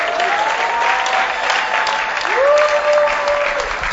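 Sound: audience clapping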